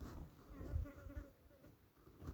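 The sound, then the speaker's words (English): Faint, steady buzzing of a mosquito hovering by a river where there are many mosquitoes, a thin continuous whine that swells and fades slightly over a couple of seconds with no voices present. “There are a lot of mosquitoes here, and I hate that.”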